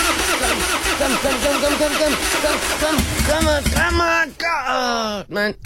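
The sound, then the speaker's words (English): A car engine is cranked again as someone retries starting it, turning over and over in a rapid, sputtering rhythm, then whining upward in pitch as it struggles to catch, loud. “Is my car finished? No. Hold on, let me just try it again.”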